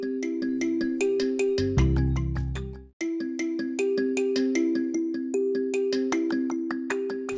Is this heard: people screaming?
no